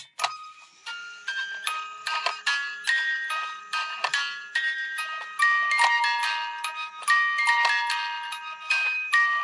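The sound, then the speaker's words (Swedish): A small bell rings rapidly and repeatedly, bright metallic strikes tumbling over one another with sustained ringing tones, steady and fairly loud for several seconds, with no talking. “Ska vi ringa klockan? Ja, jag gör det. Vi ringer klockan.”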